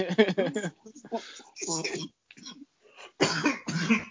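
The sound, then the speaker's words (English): Several harsh coughs burst out in quick succession, mixed with voiced, speech-like sounds and brief pauses; the coughing may be a voice imitating a coronavirus cough. “And Rona cough.”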